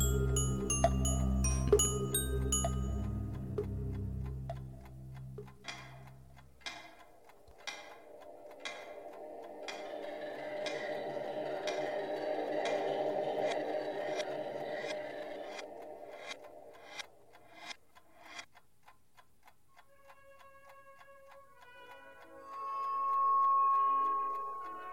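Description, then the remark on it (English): A clock ticks steadily in an even, regular rhythm, first beneath a deep rumble, then over a hollow droning swell, before a soft tonal ringing closes it out. “Sir, the clock isn't for sale.”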